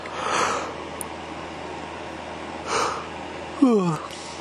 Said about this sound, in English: But, yeah, you might hear me yawning and stuff, but it's not like I'm gonna sleep.